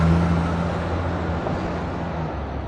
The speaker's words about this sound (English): I'm turning now from Lopez onto Bank Street. And in the bike lane, there's a school bus passing me on the left.